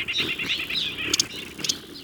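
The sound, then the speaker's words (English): In Madeira Canyon, Arizona, a busy morning chorus of small birds chirps and twitters steadily, while a low buzzing thrum of hummingbird wings rises and fades as they dart between flowers and hover to gather nectar, with a few sharp bright bursts; a white-winged dove and an occasional insect are also heard. “recordings he captured of hummingbirds in Madeira Canyon, Arizona”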